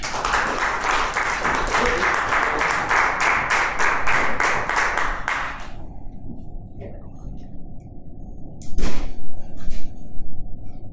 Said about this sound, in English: So y'all clap